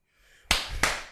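Three loud, sharp hand claps in a steady, evenly spaced rhythm after a brief quiet moment, each one a crisp, bright smack with no voices over them.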